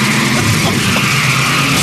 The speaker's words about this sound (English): Well, this guy's not screwing around with his first song. It's just car sounds while you're in a car. That seems redundant.